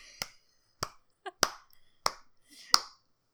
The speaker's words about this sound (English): Clapping for that performance. Thank you.